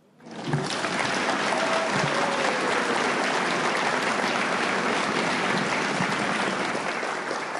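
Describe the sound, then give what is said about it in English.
A crowd breaks into steady, dense applause that starts abruptly and holds at full loudness for several seconds, a continuous wash of clapping with faint voices mixed in. “Let's give another round of applause for”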